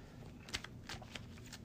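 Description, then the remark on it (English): A large encounter deck of game cards being shuffled, a few quick riffling bursts and soft flicks of card stock over a low background hum, with no one talking. “I'm going to shuffle this big beast of an encounter deck here.”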